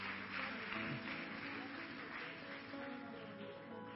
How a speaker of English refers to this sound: Can we give him a clap offering?